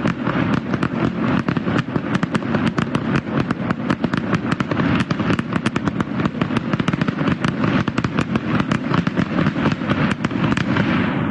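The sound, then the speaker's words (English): Loud M80 fireworks explode in the West End at 5:41 a.m. in a rapid, relentless barrage, dozens of sharp booming bangs overlapping and echoing with no pause for the whole stretch, with no voices. “These are the Big Bang ones. I call them the Big Bang.”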